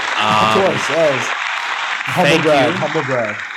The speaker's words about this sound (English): Yeah, let's give a motherfucking round of applause to ourselves.